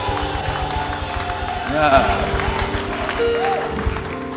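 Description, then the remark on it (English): An audience claps and shouts together for the Lord, a dense wash of applause with cheering voices rising and falling over a steady low hum. “I said, give the Lord a shout and give him a clap in the house.”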